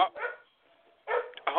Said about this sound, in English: Shut up, dog.